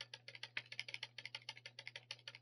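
A game controller button clicks rapidly and repeatedly, around eight presses a second, steady over a faint low electrical hum, with no talking.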